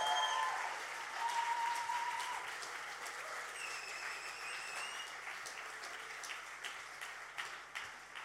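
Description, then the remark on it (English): A crowd applauds steadily as a child, a teenager and a young adult are welcomed to the stage, a dense wash of many hands clapping that starts loud and gradually eases off, with a few brief tonal whistles or cheers over the top. “If you give them a massive round of applause.”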